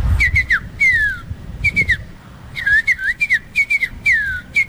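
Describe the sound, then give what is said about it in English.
A person whistles imitations of bird calls: bursts of high, bright chirps and quick trills alternating with longer downward-sliding whistles, repeated in several short phrases with brief gaps and no talking. “So it's mostly birds.”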